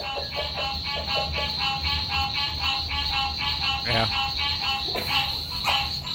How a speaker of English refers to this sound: I don't know if we're going to have as many frogs once the pond goes away, but we have so much frog action. And they're loud. Here's a little sound of our backyard.